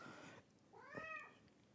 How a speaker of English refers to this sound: I'm sorry, my cat's being loud.